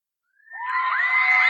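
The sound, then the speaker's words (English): After a brief silence, high-pitched women's screams swell in and hold loud and sustained, like an excited shrieking crowd cheering. “The ladies, too.”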